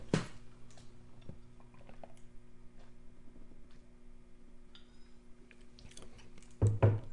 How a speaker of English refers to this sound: Pardon me while I get a drink of water.